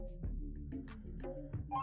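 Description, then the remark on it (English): A telephone rings with a steady, tonal chime that repeats in a few bursts over about two seconds, clear, with no one talking. “We got a phone call here.”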